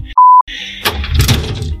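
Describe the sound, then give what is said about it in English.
A brief steady beep tone, then a locked screen door being rattled and yanked against its latch by someone outside trying to get in, a loud clatter of repeated shakes with no talking. “Oh my god, he locked the screen door.”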